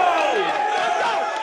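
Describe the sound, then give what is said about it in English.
A huge crowd of 65,000 screaming fans in a domed stadium in Montreal at the 2008 Grey Cup, a dense, continuous roar of many overlapping high voices that stays loud and steady for the whole moment. “We are playing in front of 65,000 screaming fans.”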